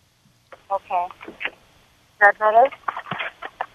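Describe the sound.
A voice coming through a muffled, degraded cell phone connection, thin and band-limited with the highs cut off, speaking in two short bursts separated by a pause.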